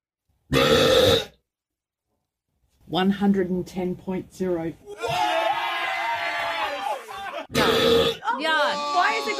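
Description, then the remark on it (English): A single loud, drawn-out human burp by a person rings out, followed by a pause and then excited voices reacting, whooping and talking over one another. “What you hear when we do the Guinness World Record holder for the loudest burp ever.”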